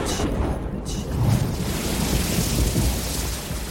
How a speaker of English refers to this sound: The ship bobs violently, and I fall backwards onto the floor of my cabin. We're sailing into a storm. I'll be needed on deck.